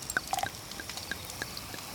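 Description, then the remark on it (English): Champagne being poured into glasses, with a soft fizzing hiss, scattered light clinks and small pops, fairly quiet, with no talking. “Get the champagne.”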